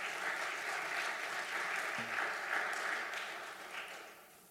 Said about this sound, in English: Would you welcome them with a hand clap? Would you do that?